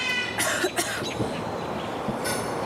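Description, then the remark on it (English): A raven named Mischief imitates a human cough: two quick, raspy coughs close together, then a pause and a third cough, over steady background noise. “That was a raven coughing like a human being?”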